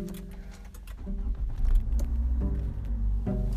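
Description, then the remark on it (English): A car engine starts up inside the car, with a brief jingle of keys at first, then a deep rumble that swells and settles into a steady idle. “And the car just started.”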